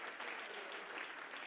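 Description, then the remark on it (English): Steady, dense applause from a church audience clapping their hands to praise the Lord, a continuous crackle of many overlapping claps with no voices standing out. “Can you clap your hands and shout unto the Lord today, for He is good.”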